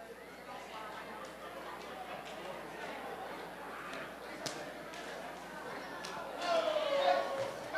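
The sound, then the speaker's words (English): A crowd of people mingles and murmurs while scattered sharp hand slaps pop out here and there, as people exchange high fives with three to five others each. “Come on, slap five to about five people, three people, and say, oh, brace yourself.”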